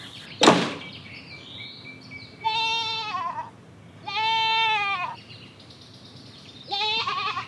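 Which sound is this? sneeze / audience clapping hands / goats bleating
goats bleating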